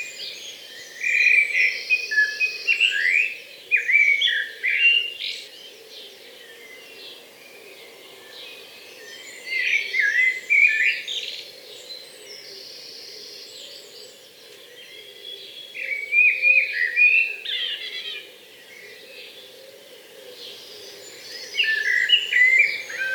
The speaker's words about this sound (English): The blackbird's song is a beautiful melody and one of my favourite to hear.